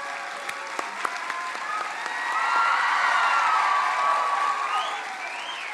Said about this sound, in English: Can you please give them a round of applause?